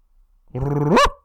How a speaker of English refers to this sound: What makes a noise? A dog. Right. So now you're going to hear a woof.